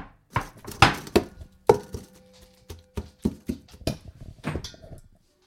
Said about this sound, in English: I've seen some recipes that say that you should put it in a blender. I'm just mixing it by hand in this big bowl. I'm not sure what the right thing to do is, but hopefully this works.